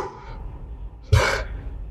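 A single sharp dog bark bursts out about halfway through, loud, followed by a lingering echoing tail that fades slowly in a reverberant space.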